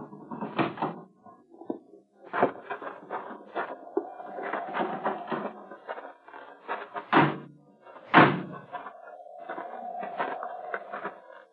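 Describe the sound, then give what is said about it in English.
A door is opened, with handle rattles and sharp wooden clunks, then a long, drawn-out hinge creak. No one speaks. “Just do like I say. Open the door.”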